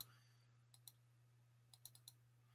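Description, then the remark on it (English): Sharp computer mouse clicks: a pair of quick clicks, then a pause, then a rapid burst of four, heard over a steady low electrical hum with no talking. “I must be clicking on the wrong thing.”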